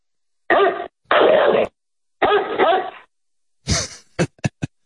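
Chicken, Benji's dog, barks repeatedly and loudly: a few drawn-out, rough barks with pauses between them, then a quick run of short, sharp yaps at the end. No one speaks.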